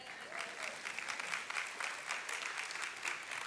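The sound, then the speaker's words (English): An audience claps together in a steady, dense patter of many hands, sustained at an even loudness for a few seconds with no voices rising above it. “You should be clapping at that.”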